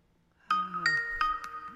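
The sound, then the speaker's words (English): A Skype call ringing tone starts abruptly after a short silence once the call is connected, a bright electronic chime of several quick melodic notes sounding clear, with no voices over it. “It's ringing.”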